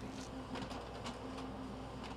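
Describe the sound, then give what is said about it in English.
A printer printing documents whirs steadily with a low mechanical hum and faint rhythmic clicks and paper shuffles, fairly quiet, with no voices. “I always do is once the docs are finished printing, I go ahead and just flip through them all really quick and make sure they're not cut off.”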